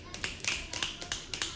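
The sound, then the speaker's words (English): A string of about seven crisp finger snaps in a loose, uneven rhythm, fairly soft, with faint voices murmuring underneath. “I need snaps for that.”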